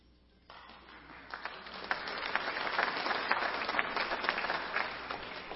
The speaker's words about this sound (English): Thank you. I appreciate that applause.